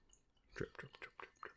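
Five or so soft, wet drips of liquid land in a loose, irregular rhythm, quiet, with no talking.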